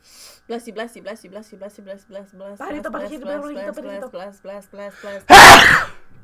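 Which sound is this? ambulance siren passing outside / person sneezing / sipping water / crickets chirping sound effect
person sneezing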